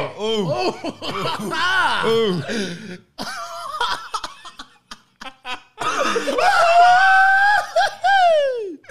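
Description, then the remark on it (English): A man coughs in a series of short, harsh bursts while trying to swallow something he is eating, with excited voices around him and a loud, strained, wailing vocal sound toward the end. “Oh, he's coughing.”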